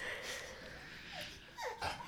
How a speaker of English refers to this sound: Our dumb dog. Sorry, guys. Sorry. He just wants to be part of the conversation, I guess. He does.